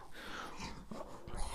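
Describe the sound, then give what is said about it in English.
A pet dog makes restless noises, soft whimpers and huffy breaths mixed with rustling movement, fairly quiet and continuous with no talking. “Dog, relax. Sorry, my dog's being a bit spastic.”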